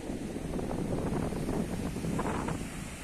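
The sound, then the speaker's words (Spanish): Steady wind buffets the microphone over a broad wash of surf at the beach of Boca de Aroa on a cold, lightly drizzly day, a constant low rumble with no speech and little change in loudness throughout. “les presento la playa de Boca de Aroa.”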